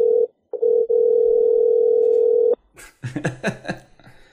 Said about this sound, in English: Phone a commissioner. Bet she doesn't pick up.